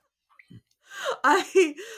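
A sharp, surprised gasp, breaking into a brief voiced exclamation with rising and falling pitch, lasting about a second, with no words spoken.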